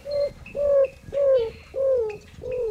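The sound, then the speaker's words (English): A greater roadrunner's cooing song in the desert of the southwestern United States: five low, hollow coos in a steady series, each note dipping slightly in pitch, fairly loud, with no other voices. “Have you ever heard a roadrunner sing? That's the maker of this cooing sound.”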